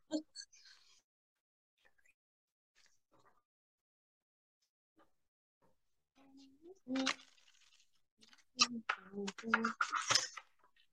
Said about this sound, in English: Let's shuffle our cards this week. I'm spoiling myself by using different cards that are really easy to shuffle. Now apparently I can't shuffle this crap.